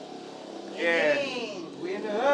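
A voice imitates a motorcycle roaring past, with a buzzing engine-like drone that swells, dips, and revs up again. It is fairly loud, with no other sounds.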